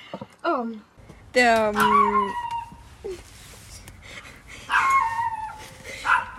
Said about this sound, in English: To all the listeners, yeah, our special guest, the neighbor's dog. Yeah, it's just gonna be like that. Sorry.